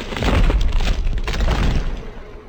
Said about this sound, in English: He kicked the door shut and pulled a sledgehammer from the workbench. Once at the table, he sent the hammer crashing into the first insulator. The resulting explosion sent him back against the wall.